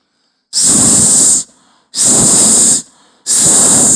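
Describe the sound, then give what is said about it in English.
A voice imitates a snake's hiss three times, each a loud, sustained "sss" lasting about a second, separated by short pauses with faint breathing. “Snake. Snake. Ready? Your turn.”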